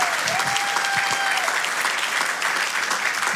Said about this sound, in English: Let's give a round of applause to the Lord.